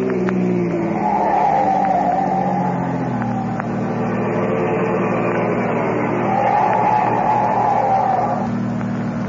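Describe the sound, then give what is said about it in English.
A car engine roars steadily, with two drawn-out tire or brake squeals cutting through, one early and one near the end, as the Blue Beetle's car speeds with a police car following and brakes to a stop at a stoplight changing from green to red. “But close behind him speeds another car, a police car.”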